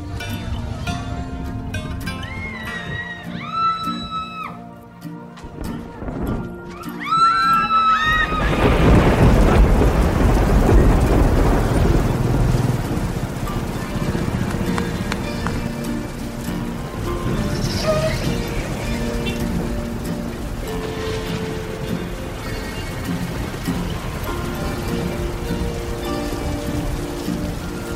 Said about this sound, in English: We're seeing some forecasts calling for up to 1 meter of rain. This is a super typhoon, in fact, with sustained winds well above 200 kilometers per hour.